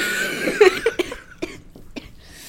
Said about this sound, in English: I've had a cough for like 3 months.